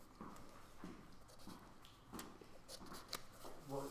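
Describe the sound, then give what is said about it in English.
Busy rustling and crinkling as someone rummages through small scraps of paper looking for lost bits, with scattered taps and shuffles; a voice briefly murmurs near the end. “no, I've lost bits of paper. Give me look.”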